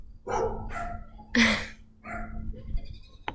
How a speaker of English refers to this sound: My neighbor's dogs are loud and they bark a lot. Sorry about that. So it took about 20 minutes for that to stop.